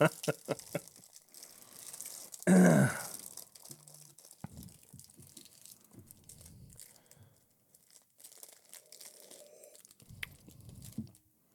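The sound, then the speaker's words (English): Crunching of a crisp peanut butter wafer: one loud, sharp crunch early on, followed by quieter, irregular chewing and crinkly mouth sounds, with no talking. “It smells like wafer and peanut butter.”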